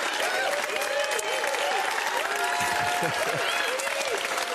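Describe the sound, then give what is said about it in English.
Sustained audience applause, a dense steady wash of clapping at even loudness throughout, with faint crowd voices and cheers mixed in underneath. “I'm humbled by your applause.”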